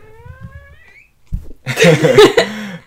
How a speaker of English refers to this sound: Kitty, don't rub against the mic.